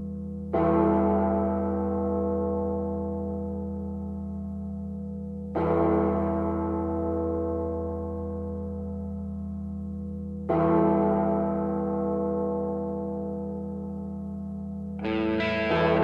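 A deep, heavy bell tolls slowly as the intro of a rock entrance song, one loud strike about every five seconds, each ring hanging and fading before the next; four strikes in all, with no voices.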